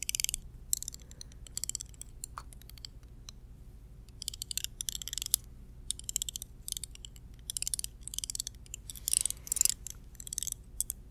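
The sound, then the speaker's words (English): Sticks rattle and clack against each other in a steady stream of dry, crisp clicks, irregular in rhythm with brief pauses, moderately loud and with no voices. “It's like we're making a campfire with sticks.”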